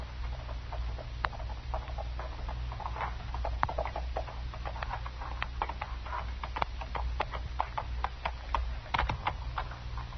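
Horse hooves clip-clop steadily throughout as a rider arrives, a dense run of sharp, slightly irregular knocks over a low, constant rumble. No voices.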